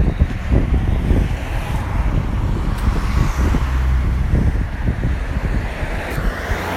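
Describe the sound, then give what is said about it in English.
A steady, low humming drone of an electric car's motor outside a window, continuous for the whole stretch, mixed with a rough, wind-like rush and no voices. “So when I'm sitting at my desk, all I can hear is something levitating outside my window, and it's an electric motor in a car.”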